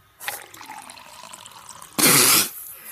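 Water pours in a steady, trickling stream for a couple of seconds, then a sudden loud splashing gush takes over briefly before fading. Nobody speaks.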